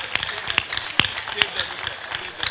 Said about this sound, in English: You see, their brothers are clapping because they understand what I'm saying.